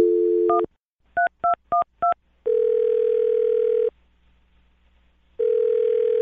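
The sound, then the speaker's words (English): A steady telephone dial tone cuts off into four quick dual-pitch keypad beeps as a phone number is dialed, then long ringing tones repeat with a silent gap between them. It is clear, with no voices. “Well, I'm going to dial her phone number right now, and you can make your Awkward Tuesday phone call.”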